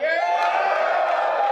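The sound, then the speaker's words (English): A crowd yells together in one sustained, loud burst of overlapping voices and cheers, holding steady for over a second without pause, voting by yelling for a talk on how to get 100 million people to see your idea. “Who votes for how to get 100 million people to see your idea? Yell.”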